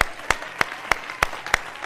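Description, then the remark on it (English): An audience claps together in a steady, rhythmic beat, with about six sharp, loud claps roughly three per second over a soft wash of crowd noise, and no one talking. “I want you to know that this entire church is getting ready to give you the biggest hand clap for what you are and what you've done.”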